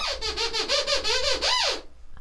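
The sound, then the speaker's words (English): The high-pitched squeaking voice of Sweep, the puppet from the Sooty Show, chatters in a rapid run of warbling, rising and falling squeaks for about two seconds, wishing everyone a happy birthday, fairly loud and alone, then stops abruptly. “Yeah, this is the Sweep squeak language.”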